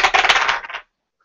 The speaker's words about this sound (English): I'm rolling the good dice.